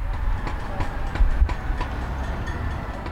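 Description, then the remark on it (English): Irregular metallic clanking, a handful of sharp knocks at uneven intervals, rising faintly over a steady low rumble of background noise: a woman at an open window across the street pats a wooden spoon against a pot lid at 7 p.m., heard through an open window. No one speaks. “Do you hear the clanking?”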